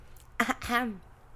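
One sneeze: a short voiced intake and then a noisy, explosive burst that trails off with a falling voiced tone. Quiet background, no talking.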